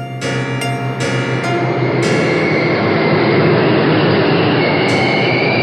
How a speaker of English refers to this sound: We got onto the train when it came into the station, and again, no one said anything, and the rest of the people on the train really didn't care.